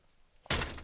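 Major, a deaf dog, runs into a door: after a quiet moment, one sudden loud thump hits, followed by a brief rattling, fading resonance.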